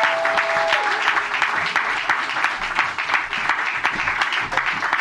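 An audience applauds steadily for about five seconds, with many hands clapping in a dense, even wash of sound that holds a fairly constant loudness and has no speech over it.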